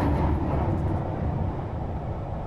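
A tube train rumbles past, a loud, steady low roar with rattling mechanical texture that holds constant for the whole stretch, with no voices.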